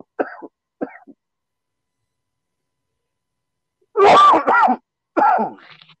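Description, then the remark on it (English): A coughing fit: two small, quiet coughs, a long pause, then a burst of loud, harsh hacking coughs in quick succession, with no talking. “I like lately I've been calling like weed coughs like cannavid.”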